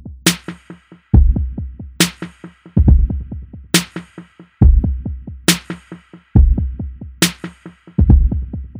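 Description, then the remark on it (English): A simple drum pattern alternates a deep kick with a bright snare, each hit trailed by faint, bouncing 16th-note echoes that repeat quickly and fade before the next beat. No voices. “the drums, which begins with a simple kick drum and snare, with faint, bouncing 16th note echoes resounding after each hit.”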